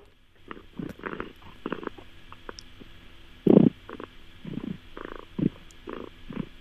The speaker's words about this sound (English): She's also the new Guinness World Record holder in a very competitive category, loudest purr by a living domestic cat.